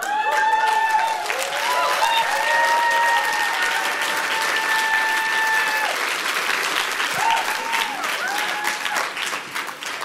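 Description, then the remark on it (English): Sustained applause from a large audience, dense rapid clapping at a steady, loud level, with a few tonal cheers or whoops rising above it, as the audience applauds the new speakers. “So let's have a big round of applause for all of our incredible new voices.”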